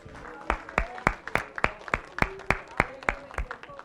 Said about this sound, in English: Hallelujah, hallelujah. Let's clap our hands to God.